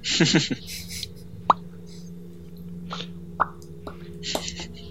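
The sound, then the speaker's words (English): Bubble wrap bubbles popping: a handful of sharp snaps spaced irregularly over a few seconds, with a brief burst of noise and a low steady hum in the background. “It's actually just a bubble wrap mechanism. pop all the bubbles.”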